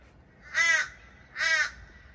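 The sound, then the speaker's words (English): A crow caws twice, two harsh, evenly spaced calls standing out clearly against a quiet background with no one speaking. “Quiet, Mr. Crow. Go away.”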